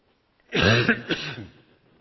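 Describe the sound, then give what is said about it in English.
A fairly loud cough from one person, a rough throaty burst followed by a second shorter push, lasting about a second on its own with no talking. “You'll have to excuse me coughing”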